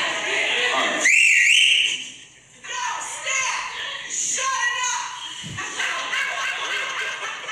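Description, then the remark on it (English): A shrill, trilling teacher's whistle blast lasting about a second cuts through the noise, followed by loud overlapping voices and general crowd commotion. “That was a great whistle. It was a teacher's whistle.”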